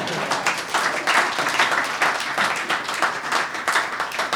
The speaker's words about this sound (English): Big round of applause.